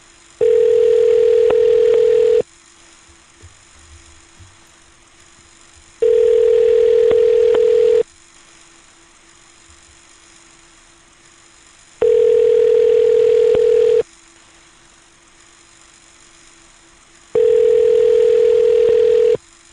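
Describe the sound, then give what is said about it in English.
A telephone ringback tone repeats four times, each steady two-second burst followed by several seconds of quiet, clear with no voices. “But let's listen to some more phone calls, shall we?”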